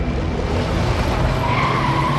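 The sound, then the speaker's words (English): A speeding car's engine roars loudly while tires skid and squeal, a rising whine sweeping across the sustained rumble of the car moving fast. “God damn it, Sam, slow down!”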